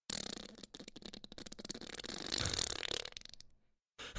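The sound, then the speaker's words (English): A wet, drawn-out mouth fart, a buzzy, sputtering raspberry lasting over three seconds that swells louder near the end before cutting off. “I got a good mouth fart though.”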